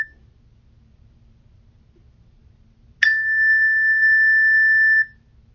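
A meditation bell rings once to begin a meditation session, after a few seconds of near silence, its bright, clear tone holding steady for about two seconds before cutting off, with a faint low hum in the background.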